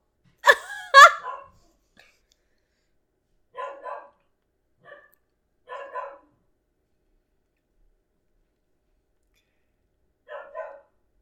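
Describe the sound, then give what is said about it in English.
A dog barks in a sharp double burst, then gives several more single or paired barks spread out over the following seconds, with silence between them. “Damn dogs.”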